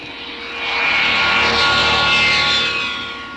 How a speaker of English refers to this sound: Well, the piece is interrupted by the howl of rocket engines, accompanied by a shot of a blur of light streaking through the star-filled sky.